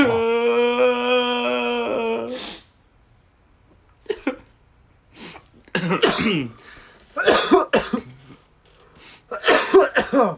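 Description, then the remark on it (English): A held, droning vocal tone gives way to a short silence, then a string of rough coughs and throat clearing comes in uneven bursts, loud and dry. “I've got a bit of a cough.”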